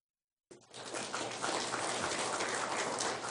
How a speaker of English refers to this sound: Hey, I didn't know you guys were getting applause. That's awesome.